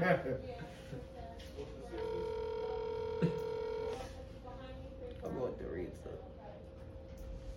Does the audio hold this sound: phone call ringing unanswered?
yes